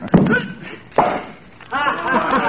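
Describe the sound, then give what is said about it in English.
Two short, soft pops of bubble gum, spaced about a second apart, followed by a stretch of voiced sound like someone talking or humming. “Hey, was that a cork popping? No, that was bubble gum.”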